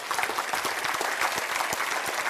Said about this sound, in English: I'm going to wait while you clap your hand there.